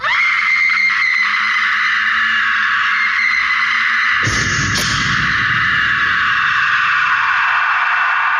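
A woman lets out a long, loud, sustained scream from the final scene of the third season of Twin Peaks, her pitch wavering slightly, with a sharp burst of harsher noise partway through.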